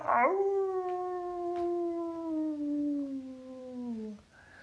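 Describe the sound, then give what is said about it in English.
A single long, mournful howl from a werewolf rises sharply, then holds a steady, slowly falling pitch for about four seconds before breaking off, loud with no talking. “But while the wolf man was howling and turning the rest of the wind to the wolf,”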